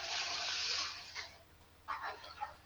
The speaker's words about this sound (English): Hey, that was cool, a toilet flushing effect.